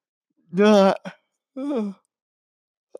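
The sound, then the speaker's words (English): A person yawns aloud early in the morning, a long voiced stretch followed by a shorter, falling sigh-like tail, with no other sounds around it. “I do these podcasts really early, and sometimes I get yawns.”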